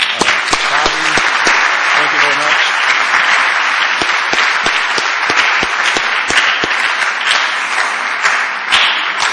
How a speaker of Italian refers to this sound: Bene, ok, vogliamo dare un altro applauso.